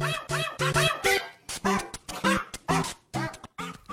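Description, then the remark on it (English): A dog barks in a quick, uneven string of short, sharp yaps mixed with high whining whimpers, fairly loud for about four seconds, with no one talking. “Radio Free Brooklyn has gone to the dogs, so perk up your ears for Monkumental.”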